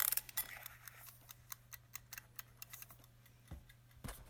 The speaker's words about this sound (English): Let's wind up the timer and get started.